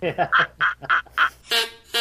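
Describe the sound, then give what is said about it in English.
A duck call is blown in a quick run of about seven loud, nasal quacks, ending in two longer, brassier blasts. “Thinking about that duck call.”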